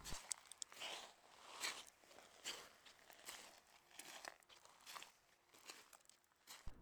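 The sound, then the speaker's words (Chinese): Soft, gritty footsteps crunch across a sandy beach by the sea at night at a slow, steady pace, about nine quiet steps over several seconds, with no voices. “忽然，右边的沙滩上刷刷地有着脚步声轻轻地传来”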